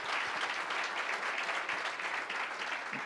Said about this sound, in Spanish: Un aplauso al Señor si se lo quiere dar en esta mañana.